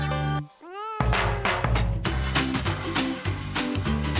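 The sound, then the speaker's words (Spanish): A single short, rising cat meow sounds briefly after a loud opening tone, then is quickly replaced by busy, upbeat music with a steady beat. “Ay, los michis, los gatitos, mañana es su día de los gatos, oye.”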